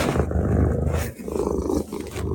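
An elderly male cat purring, a loud, low rumbling purr that rises and falls in steady breathing cycles, with no voices over it.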